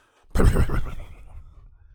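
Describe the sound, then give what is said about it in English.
A person imitates an angry horse whinny, a loud, agitated burst that wavers and trails off over about a second and a half, with no other talking. “They hate a horn, dude. They hate car horns. They get all fucking...”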